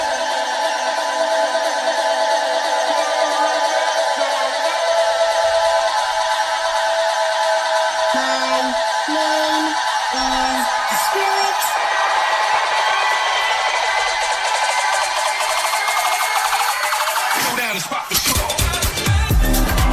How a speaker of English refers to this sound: It was such a, that track, I mean, obviously there's a bit of the crowd noise, but it sounds like it's such a full track. Yeah. You know, like, it's just a huge, all-encompassing tune, you know?